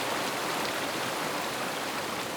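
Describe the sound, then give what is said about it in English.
Heavy rain from a winter storm that came in from the Pacific Ocean over California's West Coast pours down in a dense, steady hiss, a continuous wash of countless drops at constant loudness with no pauses and no voices. “They began far away over the Pacific Ocean and doused the parched West Coast like firefighters opening a massive hose.”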